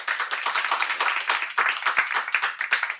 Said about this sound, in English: So clap right now if you think, yes, millennials will be left behind. And now clap if you think, no, millennials will not be left behind.